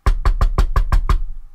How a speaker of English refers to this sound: Peter began knocking again.